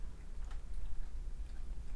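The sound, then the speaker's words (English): A cat named Kitty chewing food in a studio: soft, irregular little clicks and crunches, faint against a steady low hum, with no one talking. “Like, I suddenly just hear chewing. Kitty's in the studio, rocking out, just eating”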